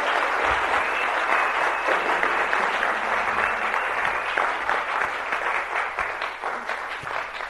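A crowd claps steadily, a dense wash of applause filling the space for several seconds, loud and sustained before gradually thinning toward the end.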